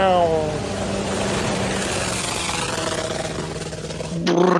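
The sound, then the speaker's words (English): A motorboat with a car-type engine roars along at speed, its loud, steady drone rising and falling slightly in pitch over rushing water noise, ending with an abrupt burst. “They put an actual car that motor on there. Oh yeah, dude. They're cruising like sons of bitches.”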